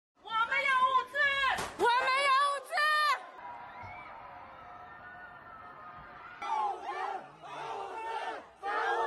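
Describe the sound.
A neighborhood crowd of residents protesting a lack of food makes a big commotion. Many voices yell in loud, rhythmic bursts, drop to a steady murmuring din for a few seconds, then the shouting rises again.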